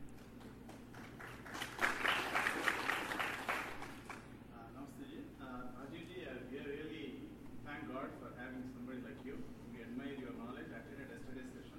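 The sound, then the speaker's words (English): A crowd claps and cheers in a loud, dense burst lasting about three seconds, then it fades and a single voice speaks over a low, steady background hum. “But I'm not the bull in the bullfight that you are cheering.”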